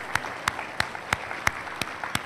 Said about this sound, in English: Every grandparent stand all over the building. Look at all that wisdom. Let's give them all a hand.